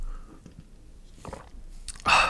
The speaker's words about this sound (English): But before I do so, I'm going to take a quick sip of my Monster Ultra.